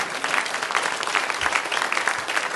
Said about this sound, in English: Can you just show me that you agree by clapping your hands and saying amen?